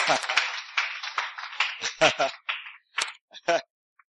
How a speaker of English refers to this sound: Yeah, the captain is coming. Le capitaine vient. Let's clap for the captain. Applaudissons pour le capitaine.